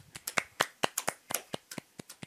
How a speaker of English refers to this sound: Clapping for all the Taurus out there.